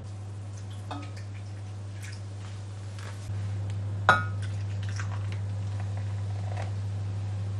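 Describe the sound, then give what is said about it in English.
Pale ale pours steadily from a 500 ml Timothy Taylor glass bottle, half the bottle going into a baking dish of apples, with a low continuous rush, a few faint glassy clinks and one sharper clink midway. No one speaks. “So the bottle's 500ml, so I'm going to pour in half of that.”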